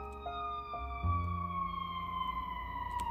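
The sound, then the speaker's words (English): An emergency vehicle siren wails steadily outside, its tone gliding downward as it passes, with a low rumble of traffic underneath and no voices. “There are sirens going on, and it's like, yes, they come get you there,”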